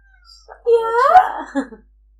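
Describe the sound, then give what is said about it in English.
A single drawn-out cat meow, rising then falling in pitch, fairly loud, with a short trailing mew at the end and no talking over it. “'s meowing. Yeah, kitty.”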